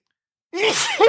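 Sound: sneeze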